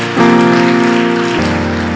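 A church audience claps together in appreciation of Jesus after a prayer, a dense, steady wash of applause, while sustained keyboard chords ring underneath and shift to a new chord shortly before the end.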